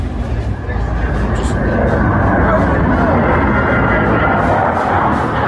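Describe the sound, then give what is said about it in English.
A fighter jet flyover at a Milwaukee Brewers opening day baseball game, with the stadium's dome roof closed: a loud, broad, rushing roar that swells slightly after the first second and then holds steady, with a crowd murmuring beneath it. “It's a flyover from like a fighter jet or something, right?”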